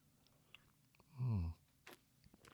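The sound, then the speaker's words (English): A single short slurping sip of tea from a cup, fairly loud against a quiet background, followed by a faint swallow and small mouth sounds. “Let me take a sip of tea.”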